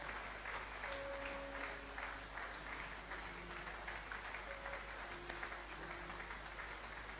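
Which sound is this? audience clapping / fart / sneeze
audience clapping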